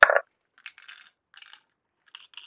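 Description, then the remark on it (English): Dice rolled for wisdom saving throws strike a hard floor with a sharp clack, then skitter and rattle in several short, bright bursts as they roll and settle, with no talking. “Floor dice don't count.”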